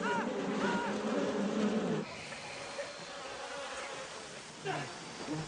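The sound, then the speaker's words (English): A bee buzzes loudly while bees are landing on a person, its pitch wavering for a couple of seconds before dropping to a quieter background hum, then briefly swelling again near the end. “Well, I don't really have an irrational fear of bees, but I am afraid that I am allergic.”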